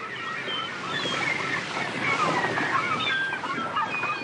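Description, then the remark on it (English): Steady water lapping and sloshing around a 40-year-old fishing boat moored at the Seaview Marina in Wellington, a continuous wash of sound with light wind, faint high chirps in the background and no one talking. “I'm at the Seaview Marina in Wellington aboard the Conquest, which is a 40-year-old fishing boat based here in Wellington.”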